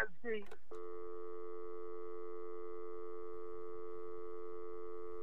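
A brief burst of warbling, garbled chirps gives way to a steady, unbroken electronic phone-line tone that holds at an even level for several seconds: the sound of a cell phone call with John Sharp.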